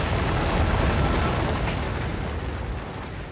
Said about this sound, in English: The slide had stopped, and the last faint crashes could be heard as the largest of the disturbed stones went bounding and spinning among the bracken and the pine roots far below.